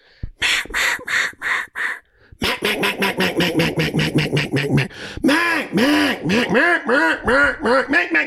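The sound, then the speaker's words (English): A duck call blows a loud series of quacks to call mallards to the water while duck hunting on the San Francisco Bay: a few spaced quacks, then a rapid run of many quacks, followed by longer, drawn-out quacking notes in steady rhythm. “And then we're going to quack them to the water.”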